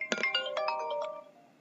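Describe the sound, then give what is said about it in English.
A phone ringtone plays a quick, bright melodic phrase of several tones, clear, then fades out with a short ringing tail. No one speaks. “Like I said, this phone goes off, the door opens, people yelling in things all the time, so...”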